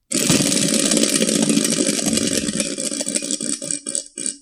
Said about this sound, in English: Hit the wheel, man. I'm gonna spin the wheel like a lazy jackass. That's what it's here for.